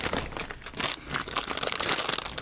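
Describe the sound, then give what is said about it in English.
Plastic packaging of a Fallout 76 item crinkles and crackles steadily as it is torn open, a dense, continuous rustling with sharper crunchy bursts and no voices. “I've got a Fallout 76 I'm going to open.”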